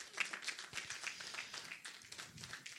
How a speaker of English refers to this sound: Let's give the Lord a hand clap for that. Amen.